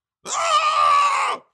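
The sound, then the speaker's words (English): A single sustained high-pitched vocal screech, loud, holding steady for over a second before cutting off abruptly, with no talking around it. “Yours could be, like, a screech or a scream for dear life.”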